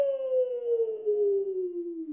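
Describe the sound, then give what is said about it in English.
A person imitates a werewolf howl for Halloween, practicing it: one sustained, wavering vocal tone that slowly slides downward in pitch over about two seconds, fairly loud and alone without other talk. “They love being princesses, and that's why this year was a little different, because they were werewolves, which we were working on our howl, and I still feel like I got a lot of room to grow with my howl, but this is what I got, you know?”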